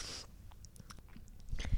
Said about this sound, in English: Let me just take a sip of my refreshingly cold water. Delicious.